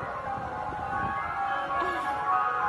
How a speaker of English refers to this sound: Can you hear it? Oh, yeah. Wow. It's like 1,000 ice cream trucks and they're all playing their different songs. That's awesome.